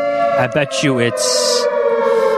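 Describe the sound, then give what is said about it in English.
A loud air-raid style siren, the Bear Raid siren at a football stadium, sounds at a steady, sustained pitch throughout, while people briefly talk over it near the start. “The Bear Raid siren worked.”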